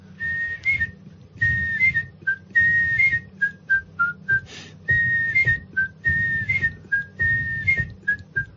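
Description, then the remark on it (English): A person whistles the theme tune of the TV show The Life of Birds, a bright, melodic string of short rising and sliding notes in steady phrases over a low background hum, with no talking. “Guess whose whistle introduced that?”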